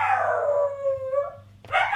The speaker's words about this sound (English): This dog makes noises that I don't think any other creature on earth makes. And he is probably 20 feet from my microphone with the door half shut. That's how loud this is.